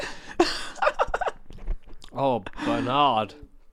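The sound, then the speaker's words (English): Crunchy chewing of Pringles crisps in quick irregular bites, followed by a voice speaking with a drawn-out, sing-song intonation. “How many people do you reckon have tuned out when I've been chewing these Pringles?”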